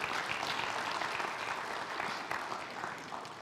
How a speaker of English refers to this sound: I think it has given us a new appreciation for such people. And I think they deserve a round of applause.